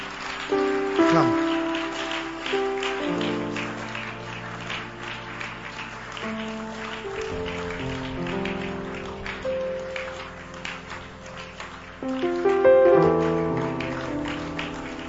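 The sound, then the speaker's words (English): A church audience claps steadily for young people who have come forward for prayer, a dense crackling patter of many hands, with sustained keyboard or organ chords playing underneath and swelling louder near the end. “God bless those who are clapping.”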